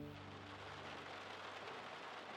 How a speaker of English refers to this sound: The rain was still coming down hard, feeding now free-flowing streams as the drains struggled to deal with the sheer volume of water.